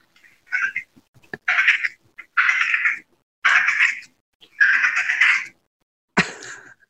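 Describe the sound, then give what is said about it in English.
A person imitates a Wyoming prairie dog call with a series of about six short, squeaky, high-pitched yips and chirps, separated by brief pauses, ending in a sharper chirp. “Here's my Wyoming prairie dog.”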